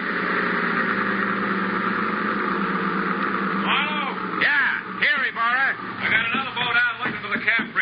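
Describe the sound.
A motorboat engine drones at a steady idle, its low rumble constant for several seconds before indistinct voices start speaking over the continuing hum.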